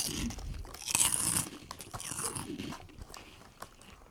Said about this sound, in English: Crunching.